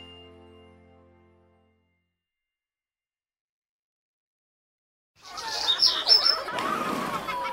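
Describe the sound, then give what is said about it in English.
After a fading musical tone and a long silence, outdoor park ambience rises on a sunny day, with birds chirping in quick high tweets over a busy, rustling background of families out playing. “The sun is shining, the birds are chirping, and families are out playing and having fun with each other.”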